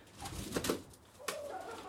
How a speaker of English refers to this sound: Oh, she's immediately trying to dominate the other chicken. Oh, uh-ohs.